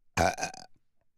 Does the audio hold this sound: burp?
yes